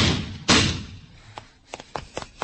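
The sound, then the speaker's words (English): A sudden heavy thud as a person is struck and knocked down by a car driving without lights, followed by a fading rumble and a few light scuffing knocks. “Just knocked me down.”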